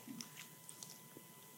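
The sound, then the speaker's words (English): Quiet chewing of something tough, with a few short crunchy clicks and soft squishy bites repeating irregularly over a low background hiss, no voices. “Takes a lot of chewing power.”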